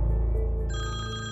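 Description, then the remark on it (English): A telephone rings with a steady electronic trill, bright tones stacking higher partway through over a low sustained hum, loud, with no voices. “Then came the one phone call that changed everything. I picked up the phone.”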